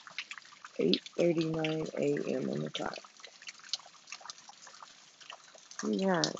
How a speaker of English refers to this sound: Hey, I hope you guys hear the rain outside. In fact, I have my own beautiful, like, little waterfall, if you will. If you want to call it a waterfall.